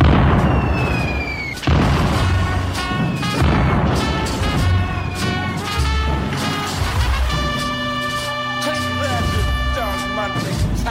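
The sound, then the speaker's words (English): A barrage of ship cannon fire aimed at sinking another ship, with loud explosions, booms landing in quick irregular succession for about eleven seconds, mixed with ringing tonal effects that thicken toward the end. “I want that ship sunk into the bubbles now.”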